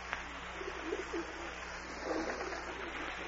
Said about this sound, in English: Go away, pigeon. Phew, go on. I haven't any peanuts. Go away. Make yourself a nice pigeon nest and sit in it. You know, you birds are just as stubborn as my board of directors. Only you sound a little more intelligent.